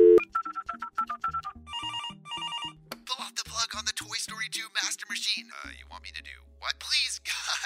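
A phone rings with a quick run of bright electronic tones in steady repeating bursts, clear, as a technical director urgently phones the systems department, then gives way to breathy, hushed sounds and a low hum.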